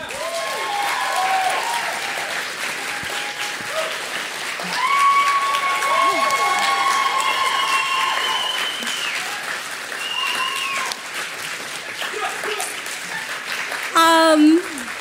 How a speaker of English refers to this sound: One more round of applause for the talented writers that got up and spoke today. Amazing.